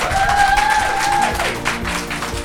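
An audience claps steadily and fairly loudly throughout, a dense patter of many hands with a faint whistle-like tone riding over the first second.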